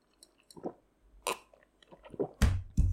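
sipping coffee

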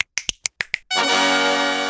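finger snapping

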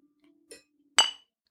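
glasses clinking

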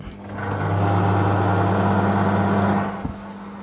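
microwave oven running

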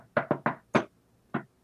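shave-and-a-haircut knock rhythm

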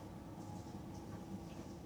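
train running on rails

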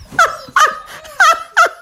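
puppies barking

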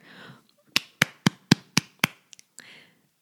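hands clapping

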